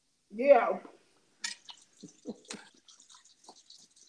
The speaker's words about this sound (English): Okay, I hear water. I was washing my hands.